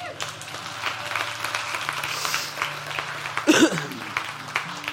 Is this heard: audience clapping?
yes